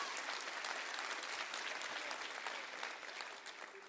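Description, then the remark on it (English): A church audience claps hands during a sermon in sustained, dense applause, many overlapping claps forming a steady crackling wash that stays loud before easing slightly at the end. “Clap your hands all over this house.”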